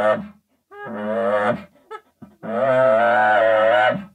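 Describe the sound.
A person's voice imitates a cow with drawn-out, droning moos: a short one, then a longer sustained moan after a few quick breathy sounds, fairly loud.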